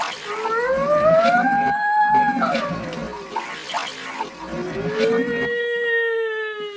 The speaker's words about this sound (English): I knew alarms were sounding. I knew my mind wasn't playing tricks.